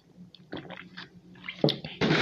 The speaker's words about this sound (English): Hold on. Gotta drink some water.